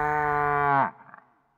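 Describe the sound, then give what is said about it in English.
A single loud, drawn-out moo from a cow being coaxed up a ladder onto a roof by an old woman, steady and rich in harmonics, that drops in pitch and cuts off abruptly, followed by a few faint scuffling sounds. “Well, after a while, the old woman coaxed and codgered and bullied and badgered the cow up the ladder, and when she got it onto the roof, she tied a rope around its neck, passed the rope down the chimney and fastened the other end to her wrist.”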